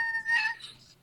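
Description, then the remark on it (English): A single short cat meow, rising then fading over about a second, moderately quiet and heard on its own with no talking. “That was the cat.”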